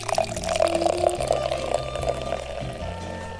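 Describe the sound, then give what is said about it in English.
An IPA-coloured beer is poured from way high up into a glass, splashing loudly for about half a second, then the foam fizzes and crackles steadily, a continuous sizzling hiss with no talking. “Well, it sounded like beer was poured for about half a second. And then it's sizzling for the rest of it.”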